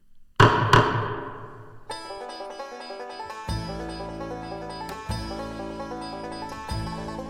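Two sharp, loud gavel strikes in quick succession, each ringing out briefly, followed by a melodic music outro that builds with a steady bass line.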